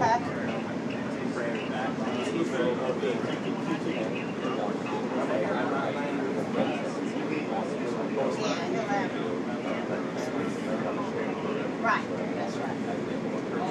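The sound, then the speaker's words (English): Steady rumble of a passenger train cabin in motion, with a continuous hum and a constant murmur of passengers talking underneath, fairly loud and unbroken throughout. “Once I get off the train here, we'll take a walk over to Wonder Bakery.”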